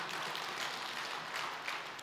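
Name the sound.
audience clapping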